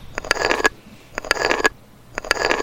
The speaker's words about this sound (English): I imagine probably like a stone being kicked or something, rolling down a stone hallway.